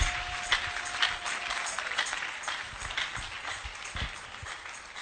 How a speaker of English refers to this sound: You can clap your hands for the Lord.